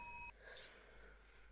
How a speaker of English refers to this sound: Oh, wait, what's that? The phone's ringing again.